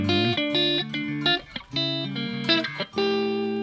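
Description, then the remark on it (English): Bright, ringing electric guitar chords strummed on the treble Filtertron pickup setting without reverb, a handful of clean strums in steady succession with brief gaps, played alone with no voices. “I think even without the reverb, you can kind of hear that filtertron.”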